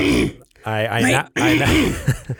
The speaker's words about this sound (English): we are clearing my throat because I'm getting ready.